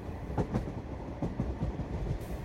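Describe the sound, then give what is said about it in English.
A train rolls steadily along its rails past a marina, a deep continuous rumble broken by irregular clacks of the wheels passing over track joints. No voices are heard. “The train passes a marina filled with white boats that are gently bobbing up and down with the small waves.”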